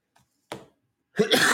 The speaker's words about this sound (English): Excuse me, I'm coughing again.